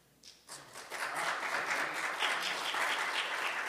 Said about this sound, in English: They didn't stand, but they clapped.